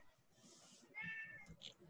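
A cat meows once, a clear, drawn-out call with a rising then falling pitch, followed by a short higher chirp-like sound, against faint background noise.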